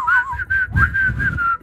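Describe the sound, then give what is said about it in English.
A woman whistles a thin, steady tune through her nose, the tone wavering slightly in short connected phrases, fairly loud, with a faint breathy rush beneath it and no talking. “She did that through her nose.”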